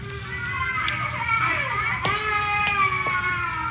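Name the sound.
baby crying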